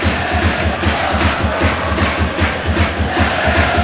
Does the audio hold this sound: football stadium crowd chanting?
yes